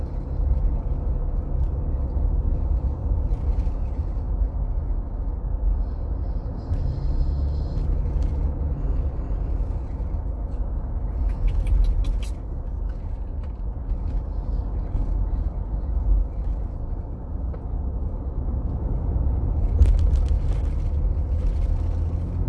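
A steady, low road rumble from driving in a car through traffic fills the whole stretch, with a few brief squeaks and clicks now and then. No one speaks.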